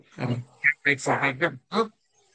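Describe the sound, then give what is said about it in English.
A dog barks in a quick, uneven burst of about six loud barks, then falls silent. “Dog? Sorry.”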